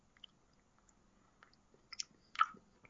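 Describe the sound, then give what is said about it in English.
Quiet chewing of a cheesy snack with milk in the mouth, with a few soft crunches and moist clicks, building to a couple of sharper crunchy bites near the end. No one speaks. “He's still chewing.”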